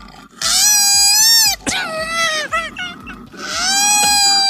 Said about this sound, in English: They sleep about 20 hours a day. The other four, they're spent screaming like fucking banshees. You ever heard a koala scream before? Watch, this is going to make you hate them with me.